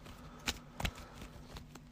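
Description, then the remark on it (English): A brief shuffle of a deck of cards during a card game with Black Panther cards, heard as a couple of crisp papery snaps followed by faint rustling against a quiet background, with no one speaking. “Put that in my hand. Shuffle.”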